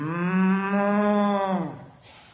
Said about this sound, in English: If you've done that, why am I hearing sheep on that? Why am I hearing?